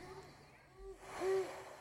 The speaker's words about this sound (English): Wait. Do it one more time. Play the owl. It's real low. It's not the one I had last night, though.